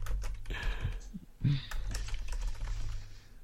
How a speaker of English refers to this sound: Sorry, I'm just writing this down. Yeah, me too. The sound of typing in the back of a podcast, just what everyone wants to hear.